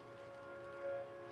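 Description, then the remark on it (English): A passing train sounds, a steady droning tone with a horn-like hum that swells briefly before easing, heard faintly on its own without voices. “And there's the train.”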